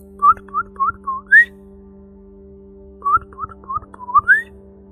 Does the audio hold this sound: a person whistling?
yes